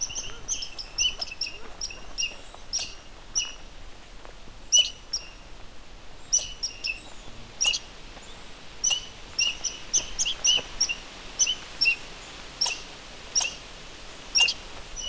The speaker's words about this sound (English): angry red squirrel.